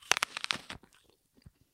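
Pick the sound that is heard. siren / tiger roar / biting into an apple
biting into an apple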